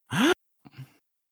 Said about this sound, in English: gasp. Oh. Yeah, there you go. Sorry, I know what happens next, so I didn't gasp.